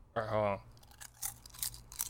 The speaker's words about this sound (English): Yeah, that was an excessive crunch. So everybody's going to hear you eat chips for like the last 15 minutes.